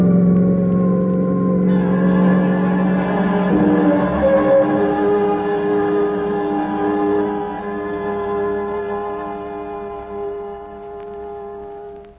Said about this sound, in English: We roared off the lot and into the side street where the motorcycle took the lead.